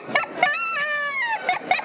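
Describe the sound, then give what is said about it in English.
Goose honks blown on a plastic game call: a couple of short, raspy honks, one long drawn-out honk, then two more quick ones, fairly loud with no talking. “You'll pick a little rasp up. The goose.”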